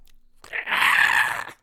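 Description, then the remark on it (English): A person imitates a flying vampire's screech with their voice: a single harsh, raspy cry lasting about a second, loud and noisy with a thin high-pitched whine running through it, then cutting off. “can you make like a screech for us?”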